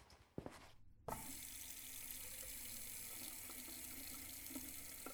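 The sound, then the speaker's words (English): A faucet turns on abruptly after a brief clatter and runs in a steady, loud rush of ice-cold water pouring into a big bowl, continuing without pause. “Get a big bowl with ice-cold water, now!”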